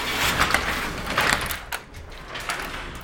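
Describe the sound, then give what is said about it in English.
Two sets of double doors of a room with a pool table and a bar swing open in nice weather onto an outdoor sitting area on Rose Avenue, two blocks from the beach, with a broad, rushing scrape, surging twice before settling into steady outdoor ambience. Fairly loud, with no one speaking. “We have two double doors here, and when the weather is nice, like now.”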